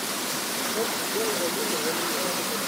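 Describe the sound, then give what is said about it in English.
A steady, loud rush of water being pumped through pipes for distribution at a regional office of Kamwater, the water distribution body in Cameroon, a continuous hiss-like roar with no breaks, with faint murmuring voices barely audible underneath. “Sound of pumping from pipes for eventual distribution at the regional office of Kamwater, the body in charge of distributing water to the population.”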